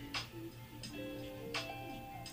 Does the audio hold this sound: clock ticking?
yes